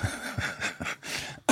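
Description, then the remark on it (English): A run of coughing: several quick, rough bursts in a row, then a longer raspy hack and a final loud, sharp cough right at the end, with no talking. “I'm coughing.”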